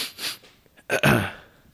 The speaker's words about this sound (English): Do you normally clear your throat before you're about to play? Yeah. It makes me feel important.